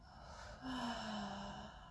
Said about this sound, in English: We're going to go into your lower back and your middle back, and we're going to release any tension you've been holding there. With a big inhale, send the breath to those muscles. Ready? Inhale. Fill the back with air and release.